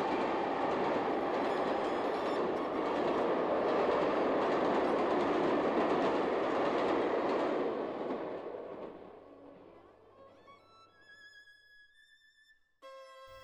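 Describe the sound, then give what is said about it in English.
An express steam train on the London North Eastern Railway line thunders past in a long, loud rushing roar that gradually fades, followed by a high whistle as it recedes. No one speaks. “the express steam train which whistled past on the London Northeastern Railway line as he began the cadenza in the first movement of the concerto.”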